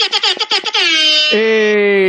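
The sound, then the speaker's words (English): A loud, brassy alarm horn sounds several quick bursts, then holds a long blaring tone that drops to a lower pitch partway through. “Sound the alarm.”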